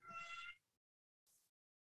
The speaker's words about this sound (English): As we have a spirit keeper chiming in the background. Is that a cat? Yeah, I just heard. It's fine. She's fine.